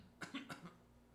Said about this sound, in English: … says, clearing his throat.